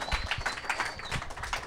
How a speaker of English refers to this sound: Here at the fabulous Lincoln Lodge Theater, everyone give yourself a round of applause. Yeah.